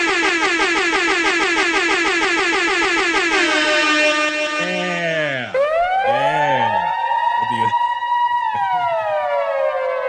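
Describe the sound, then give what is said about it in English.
A rapid string of loud air horn blasts repeats in quick rhythmic succession, then gives way to wailing, swooping horn tones that bend up and down, all loud. “I want 15 air horns in a row.”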